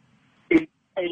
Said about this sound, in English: Your phone's crapping out, …. Every other word.